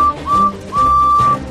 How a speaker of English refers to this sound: Thomas peeped his whistle and joined the chase.